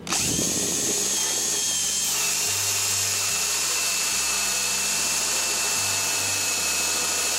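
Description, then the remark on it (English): A power drill runs steadily and loudly, its motor whine holding with a shifting low rumble as the bit bores a hole through a wooden door, with no talking over it. “So we've got this bored through.”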